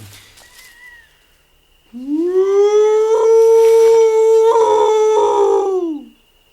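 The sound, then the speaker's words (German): A person imitates a wolf with one long, loud howl that swoops up, holds a steady wavering tone for several seconds, then drops away. No one speaks. “Boah, der Wolf heult fast so gut wie du”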